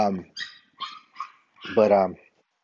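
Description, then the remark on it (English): A dog barks about five times in quick, uneven succession, with the last bark longer and louder. “oh man, that dog is so annoying.”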